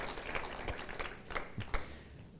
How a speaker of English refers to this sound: Come on, let's give these guys a round of applause.